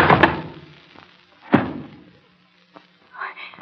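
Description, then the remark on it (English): A heavy candlestick strikes a man with dull, forceful thuds: one blow at the start and a second, sharper one a moment later, loud, followed by a brief vocal sound. “Hit him so hard. Candlestick heavy in my hand.”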